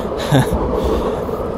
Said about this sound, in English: There's a train.